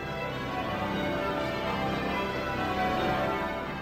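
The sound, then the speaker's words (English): Newly cast bells from the Whitechapel Bell Foundry in London, made for the Queen's Diamond Jubilee, chime together in a dense, continuous peal, their ringing tones overlapping and sustaining at a steady, fairly loud level throughout, with no voices. “And that is reason enough for them to smile when the chimes ring out this summer.”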